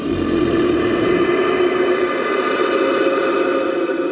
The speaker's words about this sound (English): A gigantic mechanical beast with steel claws and teeth and leathery wings that stretch across the cavern. It clicks out the joints of its neck and lets out a hoarse bellow.